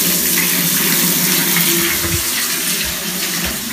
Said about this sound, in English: Okay, it's 3 minutes later and she's still not awake, and I'm just gonna start the bath. Here's the sound of the bath.